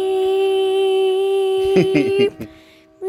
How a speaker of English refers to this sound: This train is insane. How is that so loud right now? If you guys can hear that, I will laugh.